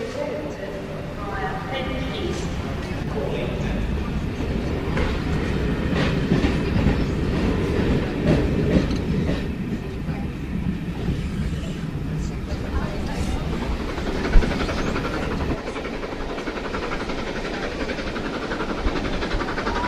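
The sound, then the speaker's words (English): A Steam Dreams steam train on the Surrey Hills tour from London Victoria via Woking, Guildford and Redhill rolls along the rails with a steady, heavy rumble and faint rhythmic clatter, lasting throughout, while voices murmur underneath; one sharp knock stands out near the end. “Thank you for inviting us along to the journey today. Welcome to Steam Dreams”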